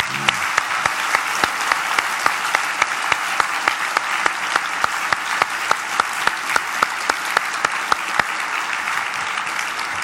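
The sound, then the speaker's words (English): A crowd at an awards presentation claps steadily for about ten seconds for a whole group of honorees, a dense, even wash of many hands with sharp individual claps popping out, sustained at a fairly loud level without fading. “I think it would be entirely appropriate to give the whole group another round of applause.”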